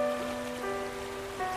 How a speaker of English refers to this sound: And the water is gone. Well, mostly gone. You can hear a drip, drip, drip.